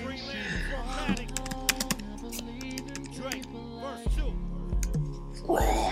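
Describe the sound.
Quick, crisp taps on an Apple computer keyboard, a short burst of several keystrokes followed by a few scattered clicks, with people talking quietly in the background.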